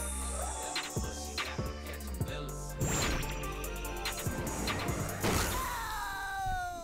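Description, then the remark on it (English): Cartoon slapstick sound effects over busy music: a few sharp thuds, then two loud, crunching crash impacts as a character gets flattened by a car, ending in a descending whine. “He just got squashed by a car.”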